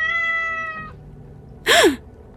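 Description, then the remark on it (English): A cat perched atop a bookshelf gives a long, steady, fairly loud meow, then after a short pause lets out a sharper, rising-and-falling yowl. No one speaks. “I gasp, startled by the other cat perched atop my bookshelf.”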